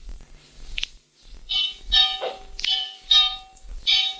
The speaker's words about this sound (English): Add to these nagging thoughts the incessant clanging of that church bell just outside my window.